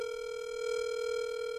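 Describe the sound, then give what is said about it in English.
A steady, unbroken telephone dial tone, heard before a call is placed, hums at an even level throughout, clear, with no voices or other sounds over it. “Watch, I'll just call him on this. See if this works at all.”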